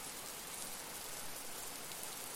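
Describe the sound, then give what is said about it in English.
Steady rain falls continuously, a dense hiss of drops pattering on a surface with no breaks, even in loudness throughout, with no voices. “I'll take more walks in the rain.”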